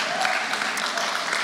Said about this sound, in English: Yeah, let's go. Let's clap right now.